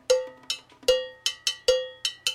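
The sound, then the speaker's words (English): A handmade metal bell, made by the speakers' own workshop, is struck about eight times in a quick, slightly uneven rhythm. Each bright, ringing clang decays briefly before the next hit, with no voices. “This is the bell that we make.”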